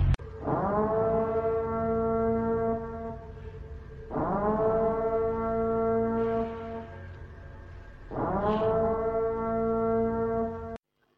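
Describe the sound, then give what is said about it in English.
An emergency broadcast siren blares loudly in three long, steady blasts, each about four seconds, rising briefly at the start and then holding one droning tone before cutting off abruptly. “Commencing at the siren, any and all crime, including murder, will be legal for 12 continuous hours.”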